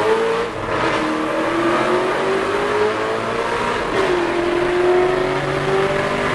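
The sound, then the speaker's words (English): The quad-cam V8 engine of an Alfa Romeo 8C sports car revs loudly, its droning pitch climbing, dipping sharply around the midpoint, then settling into a steady growl for several seconds, with no voices. “And it sounds very good in an Alpha 8C.”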